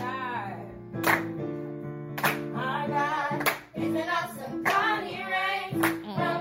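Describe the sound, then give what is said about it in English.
Young children clap their hands, sharp claps landing at a steady, unhurried beat, about every second, over sustained singing voices and tonal music that carry on throughout. “Claps are perfect.”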